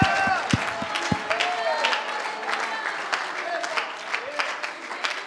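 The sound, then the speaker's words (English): A crowd claps their hands and shouts unto the Lord, clapping steadily and loudly while several voices shout and call out over the sustained, dense applause, with sharp individual claps punctuating the noise. “Would you clap your hands and would you shout unto the Lord?”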